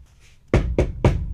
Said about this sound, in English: All right. We're outside the bathroom door. Let me, knock first.